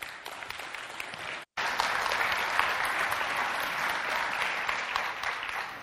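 An audience at Faith Covenant Church claps steadily for a church member about to speak, in a dense, continuous wash of applause, broken by a brief silent gap early on before the clapping resumes at full strength.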